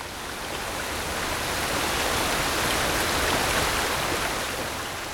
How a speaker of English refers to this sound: Ah, river flowing faster, beautiful sound.